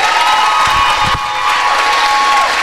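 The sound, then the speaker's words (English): An audience claps for a speaker who has just led them through a talk, a steady, dense round of applause with a few scattered cheers and whoops mixed in, loud and sustained throughout. “Please, can we have a round of applause”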